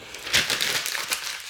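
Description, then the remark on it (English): Crackly rustling of paper being crumpled and handled, with a few sharper crinkling bursts over a second and a half. No voices. “Bits of paper flying everywhere today.”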